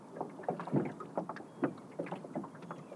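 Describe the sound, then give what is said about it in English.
A small boat turning on the water, with irregular sloshing and splashing against the hull, plus a faint breath of wind. No one speaks. “I'm just turning the boat.”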